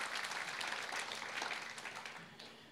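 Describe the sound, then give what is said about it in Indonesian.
A church audience claps for God steadily, a dense wash of many hands applauding at an even level throughout, with a few brief murmurs of voices mixed in. “Tepuk tangan bagi Tuhan, saudara.”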